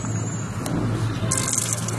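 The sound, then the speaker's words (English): A public drinking fountain is turned on with a push button to fill a bottle, its water stream adding a bright, steady hiss partway through over a constant low rumble of background noise. The ornate fountain's water comes out of a dome topped with dolphins and held up by four figures of ladies in robes. No one speaks. “Turn on the water here, push the button.”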